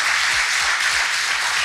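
Steady, dense applause from an audience, a loud continuous wash of many hands clapping at once with no voices over it, holding an even level throughout.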